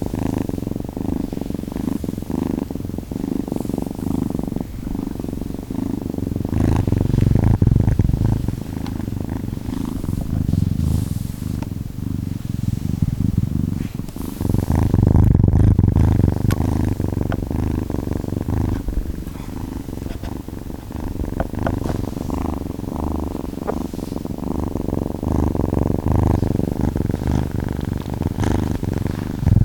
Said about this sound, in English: That was kittens purring in stereo.